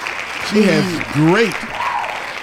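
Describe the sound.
Steady applause from a crowd, a continuous wash of clapping with a couple of rising and falling voiced whoops or cheers over it in the middle.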